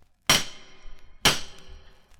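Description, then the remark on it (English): Two heavy knocks from the big door knocker on the Munsters' door, about a second apart, each a sharp, loud metallic bang with a bright ringing tail that fades slowly. No voices. “Just use this big door knocker, like this.”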